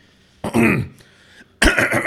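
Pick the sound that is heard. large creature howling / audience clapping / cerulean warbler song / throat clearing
throat clearing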